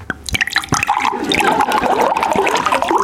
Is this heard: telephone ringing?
no